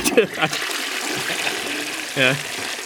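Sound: toilet flush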